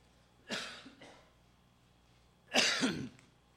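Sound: coughing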